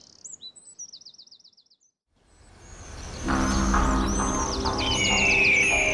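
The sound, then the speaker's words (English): A few trilling bird chirps give way to a loud, dense chorus of many birds calling and whistling at once, layered over a heavy, steady rumble. “Man, look at those birds!”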